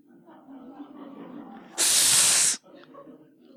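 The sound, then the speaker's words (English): A person makes a loud, sustained hissing sound like a snake, lasting under a second, set between stretches of quieter low murmuring voice. “And yet, you will also, if you recollect, you will remember that I never told you that you couldn't hiss.”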